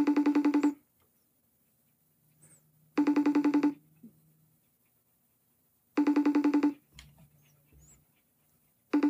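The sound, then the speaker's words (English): A phone rings repeatedly, four buzzy, steady-pitched bursts spaced about three seconds apart, each lasting under a second, with near silence and faint low rustles in between. No one speaks. “It's ringing a lot.”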